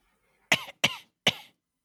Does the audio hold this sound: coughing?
yes